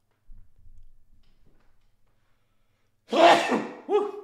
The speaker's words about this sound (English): Oh, I had a sneeze.